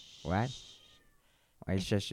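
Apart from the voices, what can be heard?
cat meowing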